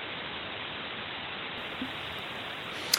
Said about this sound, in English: I'm hearing the background static.